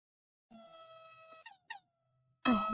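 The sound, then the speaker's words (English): A thin, feeble air horn sound effect gives a nasal sustained blast, two quick chirpy honks, then a louder final burst, with no one speaking. “I don't know about that little weak air horn, but we are back for another Monday.”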